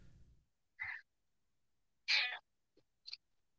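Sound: person imitating cat meows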